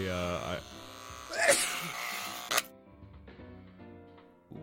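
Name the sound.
electric hair clippers buzzing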